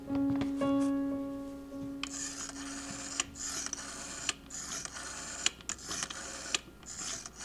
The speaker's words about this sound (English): The bedside clock showed 8 a.m., but she knew it sometimes ran slow, and so she picked up the phone.